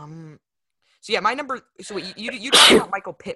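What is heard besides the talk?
sneeze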